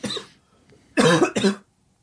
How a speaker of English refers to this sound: Ooh, every time I say that I'm sick, I cough, and it's like I'm just trying to prove to everybody that I'm actually sick.